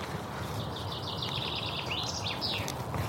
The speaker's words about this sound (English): Now, is that the Yellowhammer?